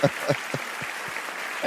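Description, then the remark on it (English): Applause for a guest on the CMS Network with Five Royals Entertainment: a steady, hissy wash of clapping with a handful of evenly spaced, thumping claps standing out at a brisk rhythm, moderately loud, no voices over it. “Clap her up.”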